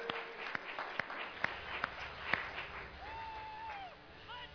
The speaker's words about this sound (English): Sam, thank you for playing the game. Everybody give Sam a round of applause.